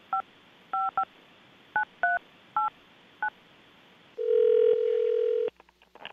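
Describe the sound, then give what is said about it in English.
Seven short telephone keypad tones beep at an uneven dialing pace as someone dials a phone call, followed by a longer steady line tone and a few faint clicks. Clear, with no talking. “And I'm going to dial them up.”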